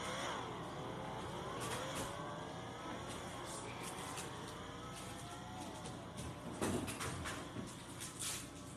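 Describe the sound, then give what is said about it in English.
Race car engines in a racing video game on a road course rev and whine continuously, their pitch sliding up and down as the cars accelerate, with a few sharp clattering bumps near the end, steady throughout. “How about listen to the car's race?”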